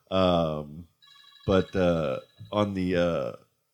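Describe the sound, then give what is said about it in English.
A phone ringtone for an incoming call from Dave Post plays in three melodic bursts, fairly loud, with short gaps between them and no talking over it. “We got a Dave Post phone call.”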